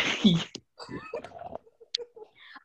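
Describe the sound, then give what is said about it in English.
A cat gives one loud meow at the start, then soft, indistinct vocal sounds and murmuring follow. “Oh, it was a cat.”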